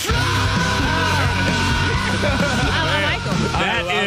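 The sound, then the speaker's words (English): A cockatoo screams along to a metal song: loud, harsh, raspy shrieks with a wavering, rough pitch, sustained almost without pause for about four seconds over a dense, heavy background. “That's a scary cockatoo right there.”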